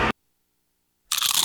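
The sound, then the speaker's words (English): A crisp, loud crunch of a first nacho chip topped with cheese, sour cream and beans: a brief crackle, a second of silence, then a longer, crackling bite with no talking. “It's the crisp crunch of that first nacho chip.”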